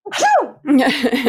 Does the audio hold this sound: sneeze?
yes